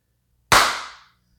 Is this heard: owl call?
no